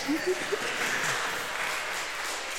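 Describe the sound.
A crowd applauds with a steady, dense patter of clapping that holds at an even level throughout, and a voice is briefly heard over it at the start.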